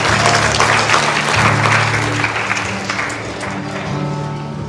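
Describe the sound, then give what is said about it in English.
An audience at a church service claps together in sustained, dense applause as praise to God, a steady wash of many hands, with a low organ or keyboard tone humming underneath. “Y'all give God a hand clap of praise.”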